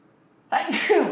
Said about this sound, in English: oh God, I'm going to sneeze.